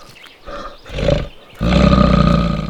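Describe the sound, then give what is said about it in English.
A black bear roars: two shorter, rising growls give way to a long, loud, rumbling roar that holds steady for about a second, deep and rough with no voices around it. “You might even spot a big resident of this park, the black bear.”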